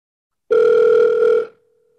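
telephone dial tone

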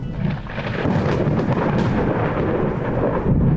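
thunder rumble

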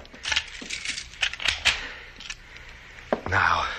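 door being locked

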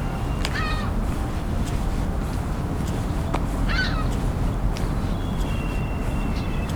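ring-billed gulls calling

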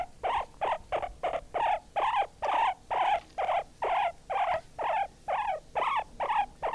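guinea pig squeaking

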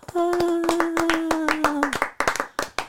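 hand clapping

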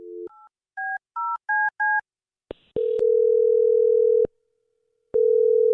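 telephone number being dialed

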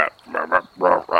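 frog croaking

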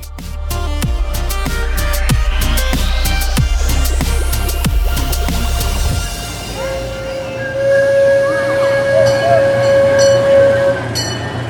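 train running on rails

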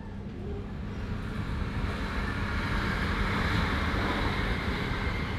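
train interior ambience

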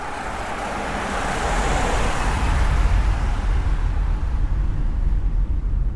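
car interior driving ambience

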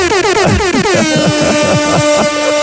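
air horn blast

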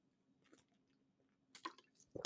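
swig of water

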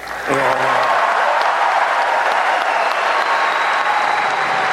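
crowd clapping

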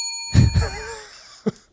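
bell being hit

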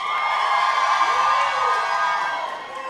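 audience yelling and cheering

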